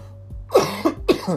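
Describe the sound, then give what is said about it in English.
Two harsh coughs in quick succession, each a loud raspy burst with a rough tail, about half a second apart, over a low steady background hum. “Goddamn, I can't stop coughing.”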